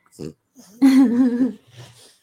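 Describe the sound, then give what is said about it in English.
A dog named Louie snorts and grunts like a pig: a short low snort, a louder drawn-out nasal grunt with a wavering tone, then another rough low snort. “Wait, he's snorting. Snort more.”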